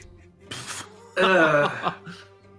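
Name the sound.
coughing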